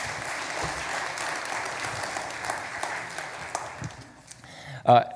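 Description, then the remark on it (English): An audience applauds two people being called up, with steady, dense clapping for about four seconds before it thins out, and a voice briefly speaks as the clapping fades. “Can we give a round of applause for Marion and Laura?”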